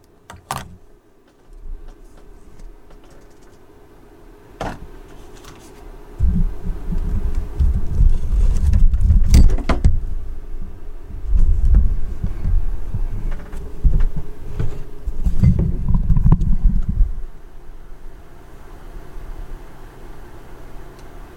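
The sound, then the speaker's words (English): A car with an overly loud exhaust pipe rumbles past the house outside after dark, its deep growl swelling for roughly ten seconds before fading away, heard muffled from indoors with no one speaking. “Some div with a overly loud exhaust pipe has rumbled past the house, which they do endlessly.”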